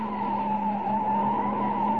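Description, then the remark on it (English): A car's tires screech loudly and steadily as it takes a sharp curve at full throttle in a high-speed chase, a sustained high-pitched squeal over engine rumble lasting the full two seconds, intense, with no voices. “They're doing 80 now. I can't get any more out of this car.”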